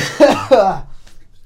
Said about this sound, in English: I was trying so hard not to cough.